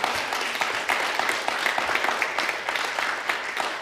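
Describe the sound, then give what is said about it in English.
A crowd applauds steadily as praise to the Lord, many hands clapping in a dense, continuous patter with no voices standing out, sustained at an even loudness for a few seconds. “Give the Lord a clap off and a praise.”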